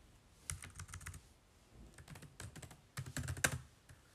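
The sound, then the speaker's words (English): Rapid typing on a computer keyboard in three quick bursts, a dense clatter of sharp key clicks, with short pauses between bursts and no voices. “Can hear my typing right, that's really quite fast.”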